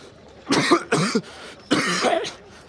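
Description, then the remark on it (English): Three rough, harsh coughs burst out, two in quick succession and a longer, raspier one after a short pause, with no talking around them. “Ain't nothing that can cure me of this dang blasted cough.”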